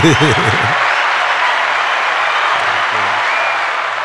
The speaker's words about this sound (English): Some claps on that.